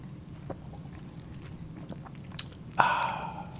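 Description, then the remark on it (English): A sip of champagne: faint mouth clicks over a low steady hum, then a single short slurping draw near the end that trails off with a soft fizzy hiss. “Now take the real sip.”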